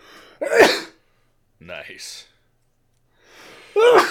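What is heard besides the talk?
two sneezes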